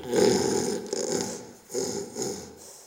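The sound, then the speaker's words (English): A person snoring loudly: two long, rasping snores in a row, each a rough, rattling inhale with a brief pause between them and no talking. “Now in our high-tech world, there are all kinds of sleep hacks that deal with snoring, like noise-canceling headphones or sound machines or even these funny-looking shirts with balls on the back to force snorers to sleep on their side.”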